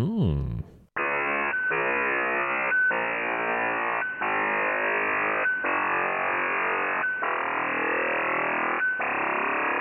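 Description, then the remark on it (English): An ionosphere sounder radio signal, varying its waves to find the altitude of an ionospheric layer: a harsh, loud run of electronic buzzes, each changing pitch, separated by brief beeping breaks, after a short burst of noise at the start. “To analyze the layer's altitude, the signal would usually have a certain sound, like a car alarm going off, results of varying the waves to get them just right.”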